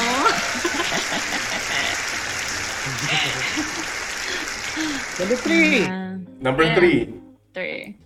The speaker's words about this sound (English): Grabe, clap na naman.